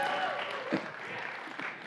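A crowd claps steadily, a dense wash of many hands with no individual claps standing out, holding a fairly even loudness throughout with a small surge partway.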